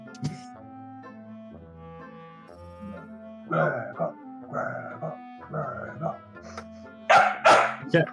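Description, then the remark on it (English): A female dog barks in a series of four or five loud, spaced barks, the last burst the sharpest, over a steady low background hum with a brief murmur at the start. “not angering any dogs in the background”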